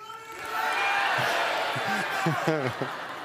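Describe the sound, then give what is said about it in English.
An audience claps in a steady, dense patter for a few seconds to guide a volunteer walking across a stage, with several voices calling out and cheering over the clapping toward the end. “There were a couple of you guys clapping.”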